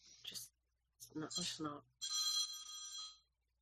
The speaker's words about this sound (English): The phone, that was the phone of Amber that she has that is hers.